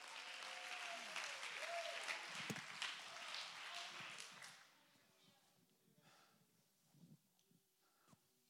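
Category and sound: crowd, audience clapping hands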